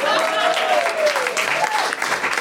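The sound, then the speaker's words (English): A studio audience applauds steadily and fairly loudly throughout, welcoming the show's fact-checker from Pedant's Corner, a dense patter of many hands, with a drawn-out whoop or whistle rising above the clapping. “Over on the facts in Pedant's Corner, doing more checking than a gingham dress, please applaud for”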